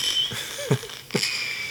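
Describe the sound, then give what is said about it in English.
Faint fireworks: three dull, muffled bangs spaced irregularly, each a short low thump with a brief crackly tail, set against a steady high-pitched hiss and whine. No one speaks. “Could you hear those fireworks? Yeah, they were faint.”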